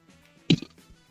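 A single short, low burp erupts briefly from a person trying to give a rating with a burp, a quick guttural pop with a faint trailing rumble, otherwise surrounded by near silence.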